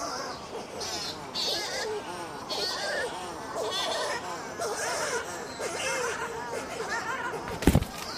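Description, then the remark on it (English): A dense chorus of wavering, bleating calls from birds hiding in their burrows among a jumble of huge rocks at night, then near the end a bird flies past and thumps into the microphone with one sharp, loud, low thud. “That was a bird flying past me and thumping into the microphone.”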